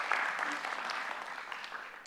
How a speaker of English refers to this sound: So give them a round of applause. Yeah, well done, guys.